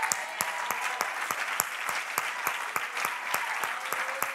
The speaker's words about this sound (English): Just clap your hands when you get there, because he's still a good God, whether you're standing or sitting.